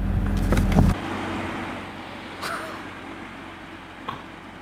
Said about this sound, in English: Hope you guys enjoyed this review of the sedan, coupe, drop top, Corvette Stingrays. This baby runs.